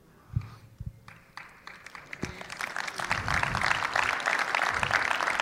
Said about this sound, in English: Some of that's like a nervous clap. I'm not going to critique you on your clap. That was a brilliant clap. Unbelievably fantastic.